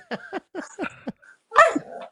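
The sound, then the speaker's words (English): A dog barks: a quick run of five short, yappy barks, then a brief pause before one louder, drawn-out bark with a whiny edge. “On dog duty right now.”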